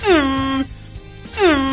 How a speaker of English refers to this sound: Yes, air horns.